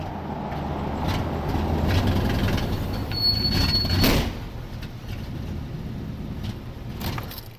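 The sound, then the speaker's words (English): A very loud, half-century-old Buick station wagon drives along with a heavy, steady low rumble and road roar, briefly joined midway by a thin high-pitched squeal; no one speaks. “At least I get to cruise around in my new friend's old car, a very loud Buick station wagon, half a century old.”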